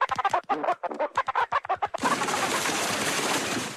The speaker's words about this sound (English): Quack, quack, quack.